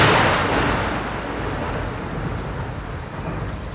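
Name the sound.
thunder crack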